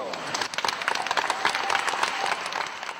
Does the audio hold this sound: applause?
yes